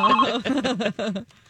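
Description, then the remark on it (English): A phone rings with an incoming call, a short melodic electronic ringtone, a quick run of bright warbling tones before it cuts off. “I mean, it looks like Kenny wants to call you on the phone.”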